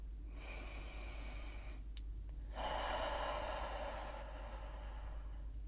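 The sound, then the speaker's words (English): A deep, slow breath drawn in, a brief pause, then a long audible exhale, with a steady low hum underneath and no talking. “Hence to why we started with an inhale.”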